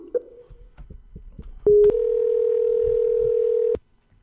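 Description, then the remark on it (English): A few soft taps and clicks give way to a short tone, then a loud, steady telephone dial tone hums continuously for about two seconds before cutting off abruptly, as someone places a phone call. “Let me, should I try calling him? Call phone? Yeah, give that a shot.”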